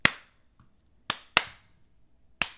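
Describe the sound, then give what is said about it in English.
Four sharp, bright hand claps, made first before recording, with uneven spacing, two of them in quick succession, each snapping out loudly and fading fast against near silence with no talking. “Oh yeah, let's clap.”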